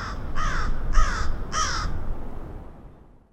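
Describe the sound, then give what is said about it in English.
Three harsh crow caws from Chicago crows ring out in quick, even succession, fairly loud, over a low outdoor rumble that fades away afterward. “Chicago's crows were hit by a deadly virus, and it's one that humans are susceptible to as well.”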